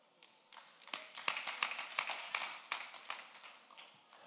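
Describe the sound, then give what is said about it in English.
A handful of people clap in a loose, uneven patter of sharp, bright claps for about four seconds, with no talking over it. “Just a few people clap.”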